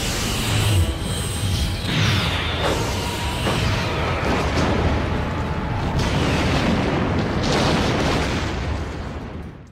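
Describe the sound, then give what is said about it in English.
Roaring sci-fi starship weapons fire and rumbling explosions from a Star Trek film, as the Excelsior blasts the Klingons, with sweeping zaps cutting through a dense, continuous barrage of deep booms that stays loud throughout. “out of a darkened galaxy sky comes none other than Captain Sulu and the Excelsior and blasts the Klingons to smithereens, thus saving the Enterprise and its captain for the next adventure.”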